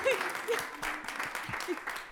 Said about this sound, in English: But I also want to thank you all, and I want you to give a clap to yourselves for the ways that you have been giving. Okay, that's a wimpy clap.